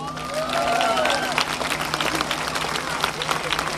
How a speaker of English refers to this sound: And how could you not get excited about the future? The future elders. What about a clap for them?